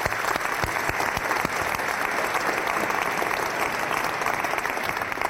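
Sustained applause from an audience fills the room, a dense, steady patter of many hands clapping at fairly loud volume for several seconds without any speech.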